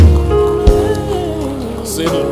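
A church audience claps steadily in a dense, continuous patter as a clap offering to the Lord, mixed with sustained musical tones and a singing or speaking voice drifting over the applause.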